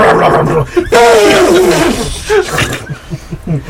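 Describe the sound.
A man playing a tabletop role-playing game, whose character has shapeshifted into a Rage Elephant, lets out a loud, strained roaring bellow imitating an enraged elephant, sliding downward in pitch before breaking into rough grunting noises.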